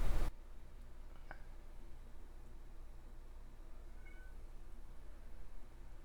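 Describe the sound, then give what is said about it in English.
A female cat gives a short, faint meow, wanting attention, over a steady low hum, coming after a brief loud burst at the very start; no one speaks. “Sorry about our cat. She wants attention, and she's not getting any right this second.”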